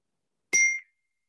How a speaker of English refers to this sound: That bell rang at this right time.